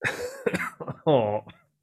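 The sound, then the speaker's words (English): A person clears their throat: a few short, rough bursts followed by a louder, drawn-out voiced rasp, then silence. “Let me clear my throat.”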